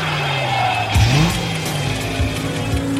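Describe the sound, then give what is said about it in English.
A car engine revs loudly, its pitch swooping up and down in several quick bursts over a steady idling rumble, with no voices. “Ladies, start your engines.”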